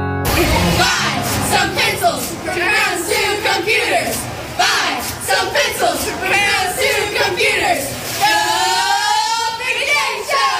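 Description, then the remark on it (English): The Northern Kentucky University cheer team cheers and yells together in loud, overlapping bursts at opening night at Kaywood Elementary in Edgewood, Kentucky, cheering on the elementary school students, with whoops and chatter throughout and a rising, wavering shout near the end. “Oh, yeah, that's our friends from Northern Kentucky University, the cheer team there, helping us out last night.”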